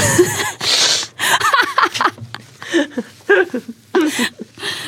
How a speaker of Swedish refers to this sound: Men framför allt, alltså, med jag måste snyta mig bara.